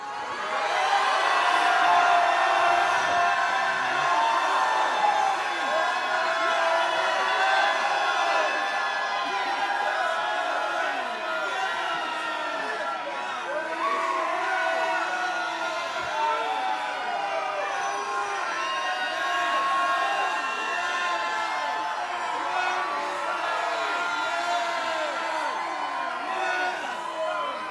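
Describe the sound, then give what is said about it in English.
An audience at a Christian worship service shouts and cheers continuously at the preacher's urging, a dense, loud wall of overlapping voices with rising whoops and yells sustained for nearly half a minute. “I want you to shout from here.”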